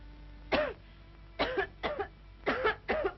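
A patient with a hoarse throat coughs at a doctor's: five short, harsh coughs in quick bursts over about three seconds, fairly loud, with brief pauses between them and no talking.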